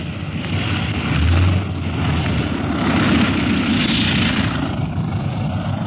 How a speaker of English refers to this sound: Harder to land this big ship than the old pursuit planes in a wind like this. All right, hold on. Here we go.